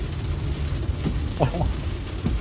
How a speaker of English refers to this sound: If there was a God, there'd be a lightning strike in 3, 2, 1, now.